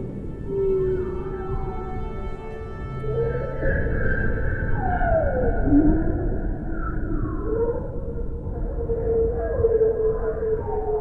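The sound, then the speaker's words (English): Bearded seal calls recorded with two underwater microphones dropped into a small opening of water: long, eerie, warbling whistles that glide and sweep downward in pitch, overlapping one another over a steady low rumble, with no voices. “Bearded seals coming out of the ether as though they were from the Martian Chronicles.”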